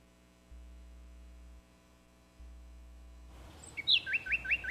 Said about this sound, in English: Hear that? The sound of adorable little birds in your garden.